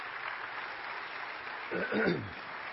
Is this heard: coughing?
no